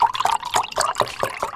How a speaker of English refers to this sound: The OJ being poured.